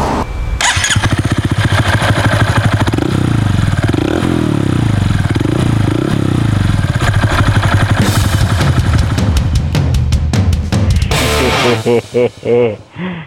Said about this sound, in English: Couple of Harleys, a Honda Monkey. This is the Monkey, and now we're going to start it up and give you a taste of that exhaust note with the Yoshi exhaust system.